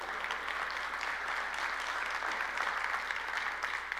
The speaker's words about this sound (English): And I'll let Lori know that you clapped for her.